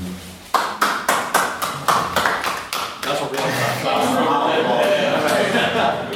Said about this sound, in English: First applause to Lib Dems ever see up this year. Anywhere.